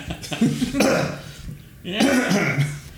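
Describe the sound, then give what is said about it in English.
Someone clears their throat and coughs in a few rough, voiced bursts, with a brief pause in the middle before another loud round of hacking. “She tries to time her coughs with the thing.”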